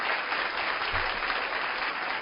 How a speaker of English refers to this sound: All our brothers and sisters from the Netherlands. How beautiful. Big round of applause for all our brothers and sisters.